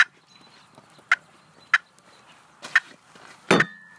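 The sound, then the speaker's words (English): Five sharp, clipped turkey clucks made on a hand turkey call, spaced about a second apart, with a brief harsher burst near the end and no talking. “And your cluck.”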